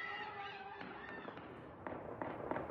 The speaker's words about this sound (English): A large blaze and unrest broke out in the capital Saturday night. But protesters gathered on the roads outside. A political prison ablaze. Gunshots ringing out.